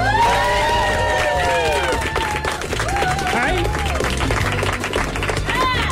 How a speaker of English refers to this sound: I feel that the applause is more out of sympathy than anything else, but that's okay.